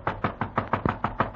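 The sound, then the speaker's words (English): A rapid, steady series of about eight sharp knocks on a hotel room door, evenly spaced and fairly loud, with a dull wooden thud to each hit and no voices. “Until one day I am in my hotel room when I hear a knock on the door.”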